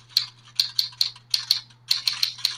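Keyboard typing as someone takes notes: about a dozen crisp, clicky keystrokes in uneven bursts, with short pauses between runs, over a steady low hum and no one talking.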